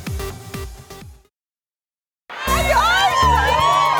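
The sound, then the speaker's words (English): A happy crowd on an outdoor plaza cheers, whoops and shouts over a thumping music beat, following a short burst of rhythmic music and a brief pause of silence, at 8:30 on Tuesday morning, 7 February 2023. “A happy crowd, a special crowd here with us on the plaza.”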